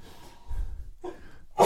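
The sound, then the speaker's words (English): A single sneeze: a couple of short, breathy inhaling gasps build up before a sharp, loud, explosive burst at the very end, with no talking. “One of the early signs is sneezing.”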